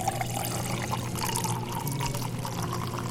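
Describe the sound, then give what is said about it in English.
A sparkling drink pours steadily into a glass for about three seconds, topping a cocktail made with Plymouth Slow Gin: a continuous splashing gush with a fizzy, crackling hiss layered over it and no one talking. “And add the bubbles.”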